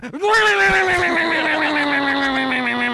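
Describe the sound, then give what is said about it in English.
A voice imitates a jet ski (wave bike) engine with one long, steady droning whine, rich in harmonics, its pitch sliding slowly downward over about three seconds, loud and sustained with no other sounds. “tell us what your wave bike sounds like.”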